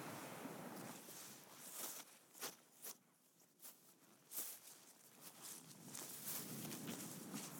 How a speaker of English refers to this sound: Well, fortunately, since we started the podcast, there's been no rain, but actually the wind has picked up, quite a strong southwesterly wind over our shoulder.